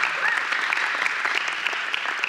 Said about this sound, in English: And we have an amazing staff. I mean, some of the top-notch people that I've ever met. And go ahead and give them a round of applause. Come on.